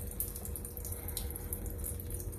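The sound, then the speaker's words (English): Water from an ice-cold shower runs in a steady, continuous hiss and splash, fairly loud throughout, with no voices and no breaks in the flow. “Let's get back to my shower. Ice cold shower is hitting again.”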